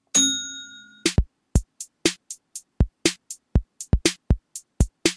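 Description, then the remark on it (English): A bell dings once with a bright, ringing tone that fades over about a second, then a quick, uneven run of sharp strikes follows, with no talking. “So I'm going to ding the bell, and then we'll crack on with the next one.”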